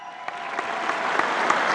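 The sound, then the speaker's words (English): The whole school, gathered as a large crowd, claps and cheers in a dense, steady roar of applause after hearing that a band will play at the school concert. The roar builds slightly louder over the short stretch, with scattered sharp claps standing out and no one speaking. “I have to stop speaking because the whole school has gone completely crazy.”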